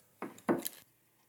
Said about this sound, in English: Damn it, I'm wearing the shitty headphones again that are creaking around. I didn't mean to do that. Let me swap these.